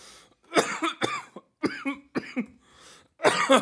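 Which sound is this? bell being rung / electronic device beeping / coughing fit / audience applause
coughing fit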